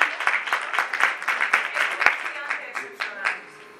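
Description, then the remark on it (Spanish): An audience claps together in a steady, dense burst of applause, loud at first and then thinning out toward the end, with a few sharper individual claps standing out. “Que por favor, si todos le damos un aplauso a esa...”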